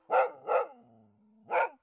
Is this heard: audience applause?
no